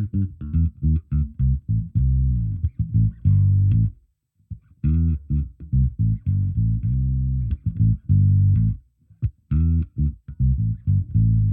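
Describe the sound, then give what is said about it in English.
An electric bass, using the bridge pickup with the tone on full and the neck pickup with the tone off, plays a solo riff of deep, punchy plucked notes in a steady, driving rhythm, with a short pause partway through and a warm, full low tone. No one speaks. “So this is the bridge pickup with the tone on full and the neck pickup with the tone off.”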